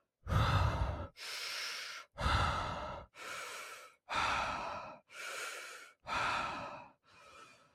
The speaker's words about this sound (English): And I am breathing out of my mouth, just like, and I'll do it for you really quick if you're just listening. Bless it, might sound a little silly, but just breathing out.